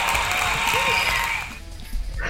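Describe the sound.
A short burst of clapping for a co-host's first horn of the season, a dense crackle of many hands that fades after about a second and a half, with faint voices underneath.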